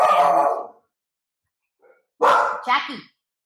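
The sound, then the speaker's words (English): Dogs bark loudly at a dog foster house in Tulum: one long bark, a short pause, then two quick barks in a row, with no talking over them. “Sorry, dogs. I'm at one of the houses of Help Tulum Dogs”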